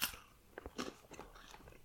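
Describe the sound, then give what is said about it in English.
Biting and crunching of a broken-off finger of a crisp chocolate wafer bar with white chocolate mixed in with dark chocolate, a sharp initial snap followed by several brittle crunches and chewing sounds over a quiet background, no talking. “I broke off one of the fingers and it's going in the mouth.”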